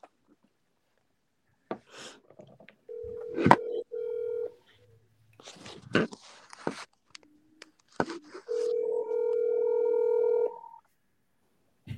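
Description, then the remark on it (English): A phone's outgoing ringback tone purrs twice, each steady ring lasting about two seconds with a pause between, accompanied by scattered clicks and handling noises, moderately loud; the call seems about to go to voicemail. “Look like it's about to go to voicemail, y'all.”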